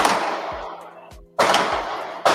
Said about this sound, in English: She's wrapping up her show. Suddenly, gunshots.